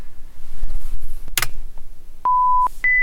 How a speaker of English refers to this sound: So basically in this experiment, you're just going to be listening for two tones in each trial. One of them is going to be higher than the other one, and your job is to choose the higher tone.